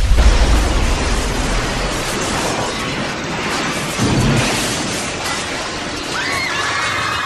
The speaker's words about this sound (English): lets loose with a blast of glowing plasma energy, which, mingled with the release of Venusian gas, results in a massive explosion that kills Star Crab instantly, sending its giant carcass crashing down onto the Hall of Science.